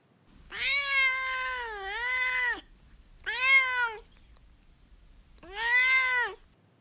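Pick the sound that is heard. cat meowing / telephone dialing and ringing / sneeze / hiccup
cat meowing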